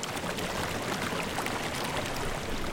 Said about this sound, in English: So instead of rushing water, it's now more like a slow-moving stream.